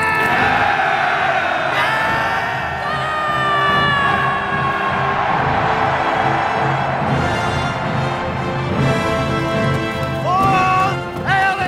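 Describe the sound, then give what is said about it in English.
Long, loud war horn blasts of the Rohirrim in The Return of the King, sounded right before the charge down Pelennor Fields, in overlapping sustained tones held for many seconds, while a massed roar of shouting voices swells beneath them, the pitch rising near the end. “They literally do a tekiah gadolah right before charging down Pelennor Fields.”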